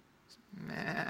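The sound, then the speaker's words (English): A man's voice imitates a sheep in a church, letting out a single wavering bleat that starts after a brief quiet moment and holds steady, fairly loud, for about half a second. “See, you get extra animal impersonations for no extra cost here at this church.”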